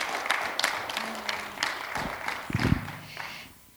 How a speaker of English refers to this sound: Come on, give a Lord a clap offering.